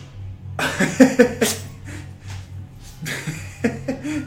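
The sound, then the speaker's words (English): A dog sneezes in two quick clusters of sharp, snorting bursts, each a breathy explosive puff, with a short pause between the groups over a steady low hum. “The dog's just been sneezing.”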